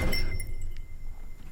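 Knocking on a knee tapped out in a song-like rhythm, the rhythm of a 1970s song performed by a male trio: a quick run of short, hard raps with a slightly clinking edge, steady and fairly loud, with no voices over it.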